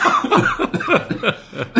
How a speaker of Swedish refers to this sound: Nu börjar jag hosta.